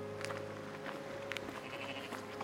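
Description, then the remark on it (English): Goats bleat in a drawn-out, wavering call against steady farmyard background noise on a family farm in the United States where goats and pigs are kept for the family; fairly quiet, with no one speaking. “On the left you see goats and pigs that they keep for the family.”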